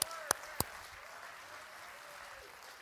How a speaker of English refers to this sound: Boy, I needed that clap. God knows I was hurting, man. I was running dry.